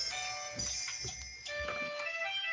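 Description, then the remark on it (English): An alarm rings steadily, a sustained chord of high, bright electronic tones running unbroken from start to finish, with soft low thuds and rumbles beneath it. “Sorry, that was an alarm.”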